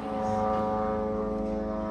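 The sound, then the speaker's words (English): A steady, droning buzz of drones overhead in Gaza, holding one even pitch with layered harmonic tones and no breaks, continuous. “Back home, amid the constant noise of drones overhead,”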